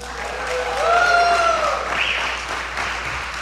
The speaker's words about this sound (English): And so my first guest, and I want you to give her a big round of applause,